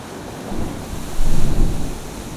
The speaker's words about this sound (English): A heavy, fine spray is spumed out. And the sea becomes all creamy and broken, and then another sweeps in underneath me and crashes in. A never-ending process. Oh, it's a big one.